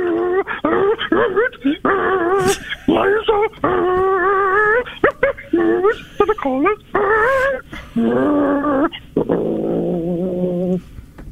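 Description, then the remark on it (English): A person mimics a dog loudly, with a run of whiny yips, whimpers and rising howls in quick, uneven bursts, ending on a lower, rougher growl-like cry. “So we have a dog.”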